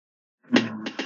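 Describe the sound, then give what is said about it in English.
A single sneeze: a sudden, loud burst of breathy noise with a voiced, tonal edge, followed by a couple of short sputtering bursts as it trails off. “Bless you.”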